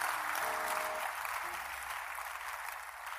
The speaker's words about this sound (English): If you can clap again, I will remove you from the suspicion list.